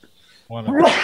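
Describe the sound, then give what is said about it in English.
After a brief quiet moment, a single loud sneeze bursts out, a voiced, breathy blast with a hissy tail that lingers to the end. “Bless you. I salute.”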